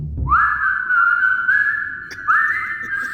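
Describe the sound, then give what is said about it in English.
Someone whistles a simple tune coming from a tunnel, holding long steady notes and stepping up in pitch near the end. The whistling is clear and plays alone with no talking. “So you guys hear some whistling coming from the tunnel, and you see light from the drift globe start to light up the tunnel entrance.”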